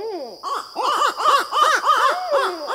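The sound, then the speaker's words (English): A raucous chorus of barred owl calls, with loud, overlapping rising-and-falling hoots and cackles tumbling over one another in quick succession, continuous. “No matter what accounts for the barred owl's dramatic sweep across the continent, the bird and its extraordinary voice seem here to stay.”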